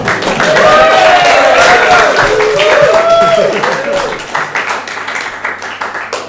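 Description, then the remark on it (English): A crowd applauds and cheers loudly, with shouting voices rising over steady clapping for several seconds before the noise thins out and fades toward the end. “I need the crowd one more time.”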